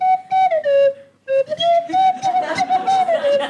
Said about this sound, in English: no, we'll have the tin whistle. I love the tin.